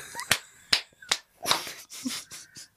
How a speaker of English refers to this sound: A clapping in my chamber door.